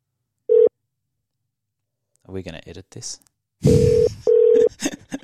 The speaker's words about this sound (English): Let's dial in … to talk Hong Kong. I wonder if the dial tone will come over this.